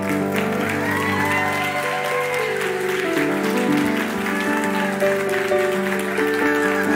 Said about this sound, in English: Why don't we give them a super thank you applause?